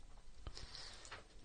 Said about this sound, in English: Okay, take a bite. Now get a good, get some water in there. There you go. There you go. Yeah, see, he gets it. He's chewing.